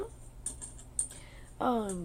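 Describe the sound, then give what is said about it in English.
Toy keys rattle and click in a few short, light bursts, shaken to get a pet named Mindy to play, followed by a person's voice speaking over the end. “Here's your keys. You want to play with the keys?”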